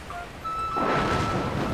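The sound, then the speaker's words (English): After a few faint high chirping tones, a steady rushing hiss of rain swells in abruptly as a storm rolls in and keeps pouring, fairly loud and even, with a low rumble underneath. “Ooh, it starts raining.”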